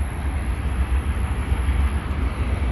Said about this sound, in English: So yeah, I love seeing that beautiful train. It's so relaxing to hear.